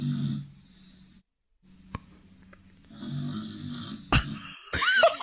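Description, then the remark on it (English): A dog named Frank snoring in low, rasping rumbles, two drawn-out breaths separated by a quiet pause, followed by a sharp snort and some squeaky whistling noises near the end. “I can hear your dog snoring.”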